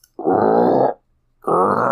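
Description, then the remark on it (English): A person imitates an alligator's bellow with two long, loud, low guttural rumbles, each lasting most of a second, separated by a brief silence. “And I was like, oh, that's not a frog. I was like, that's a fucking alligator.”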